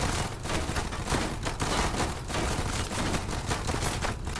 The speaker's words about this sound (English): Flashes in the mirror, bullets rattle-tattling along the side of the car, smashing the windows and shredding the upholstery.